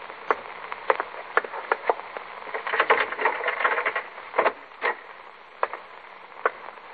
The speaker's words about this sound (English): It's about 8 o'clock in the evening as Superintendent Alfred Foster walks down the corridor on his way to visit one of his patients.